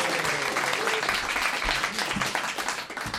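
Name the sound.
audience applause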